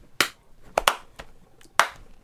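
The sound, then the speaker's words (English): A few hand claps in an uneven pattern: one sharp clap, a quick pair, a softer one, then a last clap. Sharp, bright and moderately loud, with no talking. “Cool send-off line. And clap.”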